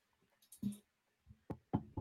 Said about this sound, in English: Knocking on wood right now.